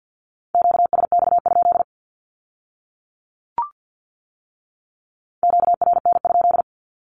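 Two quick bursts of Morse code Q-codes in a steady mid-pitched tone, keyed at 50 words per minute, separated by about four seconds of silence broken only by a single faint click.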